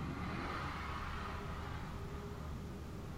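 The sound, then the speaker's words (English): A car engine revs outside, a steady low rumble with a broad hiss that holds for a few seconds, muffled, with no voices over it. “Someone's rubbing a fucking car.”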